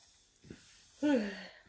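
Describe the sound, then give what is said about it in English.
A single deliberate, exaggerated yawn: a soft intake of breath, then a loud, breathy voiced exhale whose pitch slides downward before trailing off. It is a person faking the yawn. “Because it's embarrassing enough that you keep doing it, and it just makes it more embarrassing that I just have to do a fake yawn, and 9 times out of 10, you'll yawn back.”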